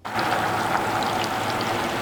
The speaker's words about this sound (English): It's not a familiar sound in late December at the Hart Ski Hill, the sound of trickling water outside. And the sign says it all, closed due to weather, unseasonably warm weather that has coated the slopes in standing water and ice.